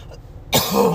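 A single loud cough from a speaker who is under the weather bursts out halfway through after a quiet moment, rough and throaty, trailing off with a brief voiced rasp. No one speaks.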